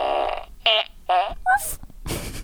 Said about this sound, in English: I gotta get another sound effect machine. I need this fart, these farts, but I also need one that does other sounds.